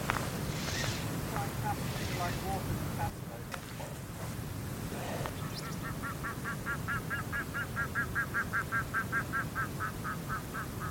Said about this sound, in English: What on earth is that noise? I hope that captured. So that was an unusual bird call. I don't know what that was. I'll have to check what it was. Felt grouse-like, but you just don't know.